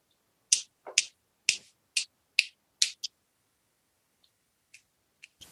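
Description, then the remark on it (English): Six sharp, bright cracks of ice being broken for a gin and tonic cocktail come in quick, steady succession, followed by a few faint scattered ticks, with no talking. “He has the fancy breaking the ice.”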